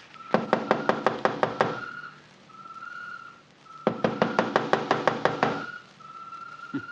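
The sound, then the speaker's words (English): Two quick bursts of about eight sharp, even knocks on the door of a house, separated by a short pause, with a steady high whistling tone running between and beneath them. “First time I ever heard of targets knocking on the door.”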